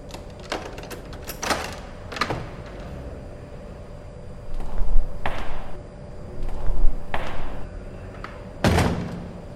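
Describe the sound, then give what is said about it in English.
A series of sharp metallic clicks and clunks as an officer works the lock of a door, ending in a loud heavy clunk as the door is pulled open, with no talking. “Officer, please unlock the door.”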